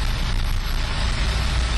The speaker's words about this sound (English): I'm now driving into some sort of underground bunker. It's a car park, but I like to imagine it's some sort of military facility from some kind of PlayStation computer game.